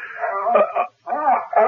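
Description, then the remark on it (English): A dog barks in two excited, yelping bursts split by a brief pause, its voice strained and whiny with no one talking over it. “what the devil's the matter with this flea-bitten hound?”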